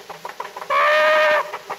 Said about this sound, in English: Yeah, look out for that chicken.